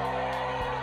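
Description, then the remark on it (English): A short burst of crowd booing, a steady low droning jeer from many voices that holds at an even loudness for under a second. “Anyways, stop booing.”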